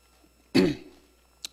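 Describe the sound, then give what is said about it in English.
A single forceful cough that rasps into a throaty clearing and fades out, followed by a brief faint click, with no talking. “For those of you who have been around for a while, you know this is the time of year. I get a cough. I get a runny nose.”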